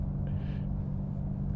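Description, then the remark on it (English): A steady, loud low rumble of road and engine noise from inside a car moving at speed, slightly over the speed limit, with a faint hiss on top and no voices. “But I am speeding slightly.”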